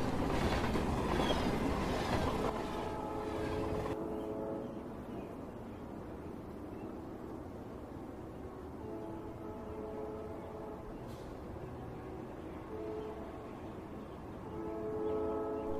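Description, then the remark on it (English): A train rumbles past, its horn blaring in long harmonic blasts that return several times over a steady, roaring rail noise, loudest at the start. “on June, at night, you can still see the lights of the train of Highbridge and can hear the blood-curdling scream of our dear sister.”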